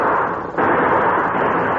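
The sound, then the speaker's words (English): A loud gunshot cracks out about half a second in, a shot that hits a fleeing man on horseback, over a dense, steady roar of harsh noise that keeps going afterward. No one speaks. “Somebody drilled him that time.”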